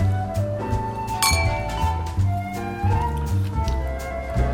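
drinks clinking together

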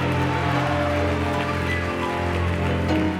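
audience clapping hands

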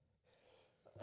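sneeze

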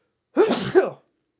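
big sneeze

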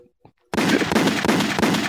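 gunshot sound effects

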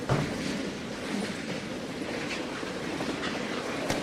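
train sound effect

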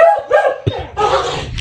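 dogs barking

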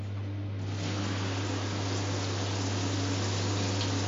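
shower water running

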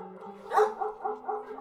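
dog barking

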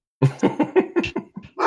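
dog barking

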